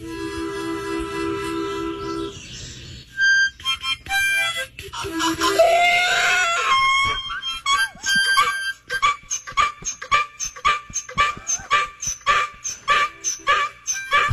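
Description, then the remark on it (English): A harmonica plays steady chords while Nelson, a singing donkey, joins in with squeaky brays, then settles into quick rhythmic breathy huffs, almost like beatboxing along to the tune. “Number one, the donkey was more beatboxing than singing there.”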